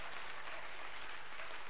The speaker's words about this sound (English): Brother, let's give a clap of offering to the Lord. Offrons une clap d'applaudissement au Seigneur.